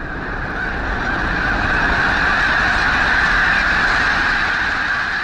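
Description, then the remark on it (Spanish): A huge flock of about 5,000 geese suddenly lifts off together, a dense, continuous roar of overlapping honks and rushing wingbeats that stays loud and steady throughout, with no voices. “Los gansos son 5.000 flechas colocadas en 5.000 arcos tensados. Y de pronto, sin advertencia, despegan.”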